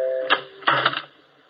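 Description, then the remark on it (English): A funeral parlor doorbell chime plays a short melody by Chopin: sustained ringing tones followed by several bright, struck notes in quick succession, moderately loud, with no talking. “Ooh, listen to that doorbell. Chopin, at least.”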